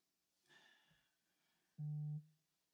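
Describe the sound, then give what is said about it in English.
A single short, loud phone buzz, a steady low droning pulse lasting under half a second, preceded by a faint brief rustle with no talking. “Is that your phone or my phone? Nope, that's your phone.”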